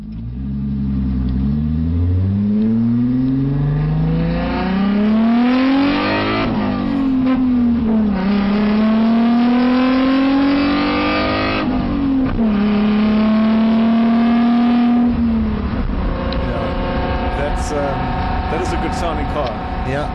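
The 3-litre V6 engine of an Alfa Romeo GT road car revs hard, heard from inside the cabin while driving, pitch climbing and dropping through repeated gear changes, loud with a throaty rumble throughout.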